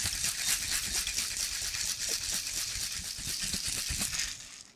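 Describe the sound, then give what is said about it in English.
A cocktail shaker with ice is shaken steadily for several seconds before straining a cocktail, a rapid rhythmic rattle of ice over a loud, hissy shushing that stops abruptly at the end. No one speaks. “And we're going to shake and strain.”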